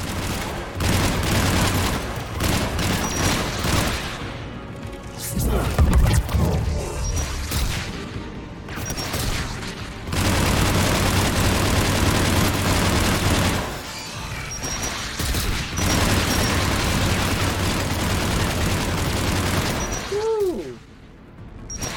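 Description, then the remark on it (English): Sustained bursts of rapid video game gunfire with heavy booming rocket explosions, loud and dense throughout, with brief lulls between volleys and a rising whine near the end. “Hey, if you shoot the rockets while they're in mid-flight, it actually stops them from coming at you.”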